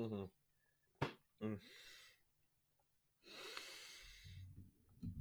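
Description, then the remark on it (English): Someone gulping down water: a few sharp swallows and wet clicks, then a long, loud breathy exhale and a low throaty sound, with no talking. “I'm so sorry if you can just hear me gulping down water.”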